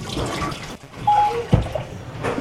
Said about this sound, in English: Wash the batter off my hands.